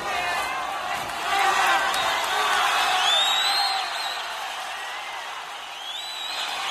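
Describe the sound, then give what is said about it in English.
A concert crowd in Boston roars and cheers continuously for an encore, with shrill whistles and whoops rising above the din; the noise swells in the middle, then eases slightly. “They want more. I guess they want more.”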